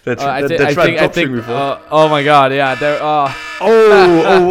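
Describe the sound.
A voice imitates a buzzing alarm with a loud, nasal, raspy drone that wavers in pitch and breaks into several bursts over a few seconds.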